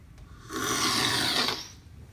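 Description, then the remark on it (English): A single sharp slurp of Ethiopian medium-roast coffee from a spoon during a coffee tasting, a loud, airy, hissing rush lasting about a second, with quiet pauses on either side and no talking. “So you're gonna just grab that bit of the coffee at the top, just into the spoon, getting as little as possible of that ground, and then the slurping.”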